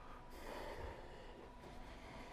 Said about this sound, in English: Take a couple conscious breaths in through the nose and out through the nose. And just feel your body rising and falling on your breath.